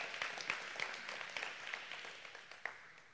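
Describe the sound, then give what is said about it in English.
An audience breaks into scattered applause, a patter of many hands clapping at once with a few sharper claps standing out, gradually thinning and fading away. “You can clap.”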